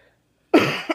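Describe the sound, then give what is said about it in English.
A single harsh, loud cough bursts out after a moment of silence, trailing off with a short raspy follow-up. “I still have a cough.”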